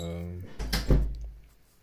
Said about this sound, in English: someone is knocking.